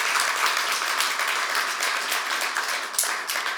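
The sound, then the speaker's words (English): An audience claps steadily, a dense, even wash of many hands applauding with no pauses, moderately loud throughout, with no one speaking over it. “Yeah, we can clap our hands for that.”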